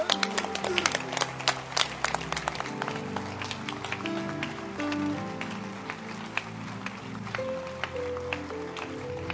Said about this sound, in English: Clap your hands well.